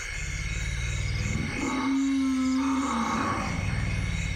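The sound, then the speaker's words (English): A deep, continuous rumbling from large African forest elephants in the Congo, with one sustained low, droning call rising through the middle against a dense forest backdrop of steady insect hiss. “These are African forest elephants. And some of the sounds you can barely hear because their frequency is so low.”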